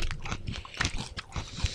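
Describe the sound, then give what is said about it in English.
Crunching and chewing of a Japanese rice cracker, a quick irregular series of crisp, brittle bites and munches with no talking. “Well, it's a rice cracker. That's why it's real nutty. Kind of airy.”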